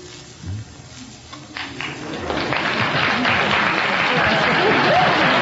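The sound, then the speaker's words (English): A crowd of young audience members claps, starting as scattered hand claps that quickly swell into steady, dense, loud applause with some voices mixed in. “Keep applauding, kids.”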